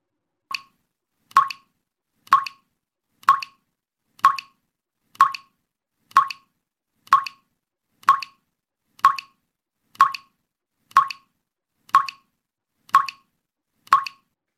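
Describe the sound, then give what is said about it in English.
A faucet drips steadily, each drop landing with a clear, hollow plop about once a second. Around fifteen evenly spaced drops ring out amid otherwise silence. “Have you ever heard a faucet that dripped all night?”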